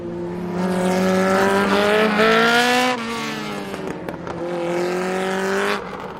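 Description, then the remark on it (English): Loud racing car engines rev and whine in rising, harmonic-rich bursts, two sweeping passes with a brief dip between them, like a car sound effect played on its own without any talking. “I will now insert car sounds.”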